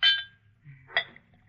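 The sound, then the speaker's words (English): A drink is poured into a glass: a bright glassy clink at the start, a short lull, then a second sharper clink and trickle over a faint low hum, with no talking. “That reminds me, Effie, pour me a drink.”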